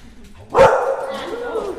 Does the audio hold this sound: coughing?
no